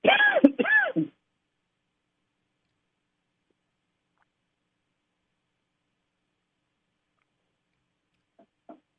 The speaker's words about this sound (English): Excuse me, I'm going to cough.